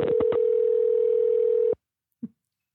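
A steady telephone ringback tone on an outgoing call from a radio studio to reach someone for an interview hums for under two seconds, then cuts off abruptly, followed by a short faint click after a pause of silence, with no voices.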